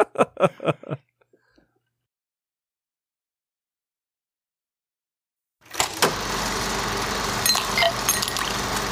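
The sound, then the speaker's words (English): A few quick mechanical clicks and thunks, then a pause of near silence before a steady, full-band car noise swells up and continues loudly, like a vehicle starting and driving. “Get in the car.”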